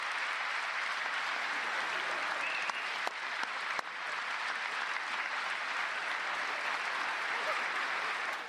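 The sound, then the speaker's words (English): Steady, dense crowd applause fills the whole stretch at an even level, with a few sharper, slower individual claps, Bernie Sanders' grumpy, slow clapping, briefly standing out around the middle. “But no reaction was better than Bernie Sanders' grumpy, slow clapping.”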